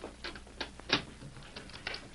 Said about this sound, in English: Now open the door. Some guests just stopped outside. Hold on a minute.